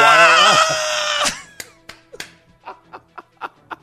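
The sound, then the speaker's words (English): An announcer lets out a loud, sustained, excited scream for over a second, then it breaks off into a string of short, rhythmic, breathy bursts, like chuckling. “He may just need to start screaming like that after touchdowns just to switch the gimmick up a little bit.”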